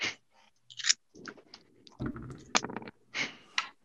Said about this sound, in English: I hear the crunch, crunch, crunch of clamshells. Yeah, you hear me scrunching my way away.